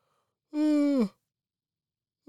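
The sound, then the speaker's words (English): A single drawn-out vocal yawn, fairly loud, holding a steady tone before sliding down and trailing off into silence, with another voiced sound starting just at the end. “I'm just yawning at the fact that it's going to be the Cubs and the Reds in the Field of Dreams game.”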